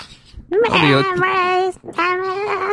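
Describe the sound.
A person's voice mimics a wailing cat in two drawn-out, whiny yowls, the first longer with a rising then wavering pitch, both loud with no other sounds.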